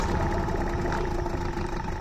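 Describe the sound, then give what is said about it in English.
A boat motor idles steadily, a continuous low, rumbling drone with a slightly rough, pulsing texture that stays at an even loudness throughout. No one speaks. “That's what the start of a great day on the water sounds like for my family.”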